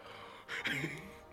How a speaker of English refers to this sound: Heavy breathing, Control. What? Heavy breathing.